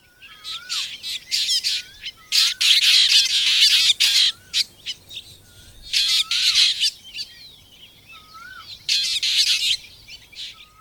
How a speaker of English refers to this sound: Drongos, birds of the family Dicruridae, often show this behavior. Here's a black drongo calling in southern India.